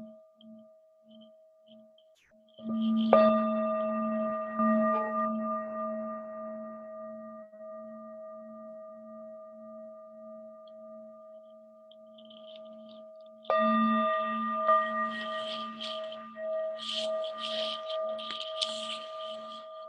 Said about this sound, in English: You can do this a couple more times as I ring this singing bowl and just consciously relax and release any tension in the body as you breathe out. Listening to the sound of the bell and relaxing the body.